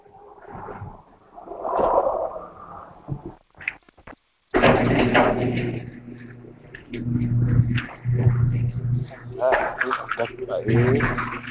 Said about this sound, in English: Sorry, that was a garage door. I have to edit this part out.